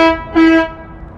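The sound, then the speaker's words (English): A car horn blares in a single sustained honk, swelling louder partway through before trailing off, with faint background noise and no talking. “I love how that car just went off like that.”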